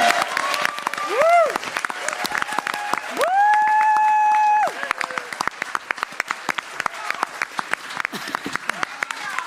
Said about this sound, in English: So you give them a round of applause.